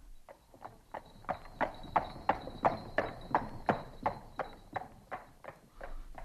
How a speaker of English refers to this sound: As the horse pulled away, you could see all the people of the street return slowly to their work.